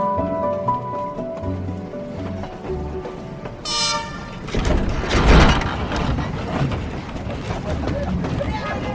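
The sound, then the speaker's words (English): A train leaving Yangon as darkness falls sounds its horn with sustained tones, then the loud, broad rumble and clatter of the train picking up speed takes over and continues steadily, with faint voices in the background. “Yangon's gravitational pull broken, and with darkness falling, the train picks up speed.”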